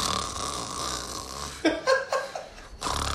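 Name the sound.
voice imitating snoring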